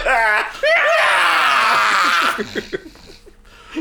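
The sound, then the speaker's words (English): A person lets out a loud, drawn-out, exaggerated scream lasting nearly two seconds, followed by a few quieter breathy vocal bursts. “Insert scream. Insert scream. Just scream your pain.”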